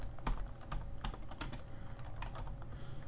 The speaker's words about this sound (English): I wasn't sure if you were typing or not, because I was typing at the same time, and I heard it loud and clear.